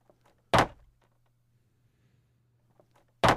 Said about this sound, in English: And that's when I heard those familiar footsteps that I remember as a kid walking up to my door.